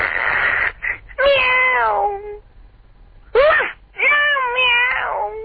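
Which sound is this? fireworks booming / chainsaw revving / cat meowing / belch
cat meowing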